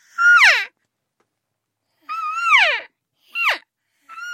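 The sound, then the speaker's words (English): A woman, a 2017 world champion natural voice elk caller, imitates elk cow calls using only her vocal cords: four high, nasal mewing calls separated by silent pauses, each rising then sliding down in pitch, the second longer and the last cut off. “So here's a couple of the cow calls.”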